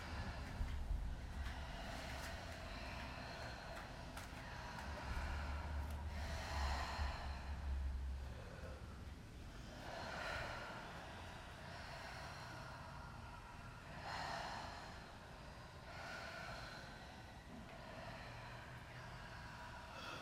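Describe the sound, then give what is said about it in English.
Slow, deep breaths: airy inhales and exhales swell and fade every few seconds over a steady low rumble, with no talking. “Let the weight of the world roll off your shoulders as you inhale, inhale, exhale.”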